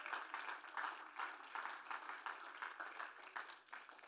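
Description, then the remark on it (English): A standing church audience claps in praise to the Lord, sustained, dense applause, many hands overlapping into a steady rattling wash with slight rhythmic pulses throughout, no voices standing out. “Go ahead, give the Lord a mighty hand clap of praise.”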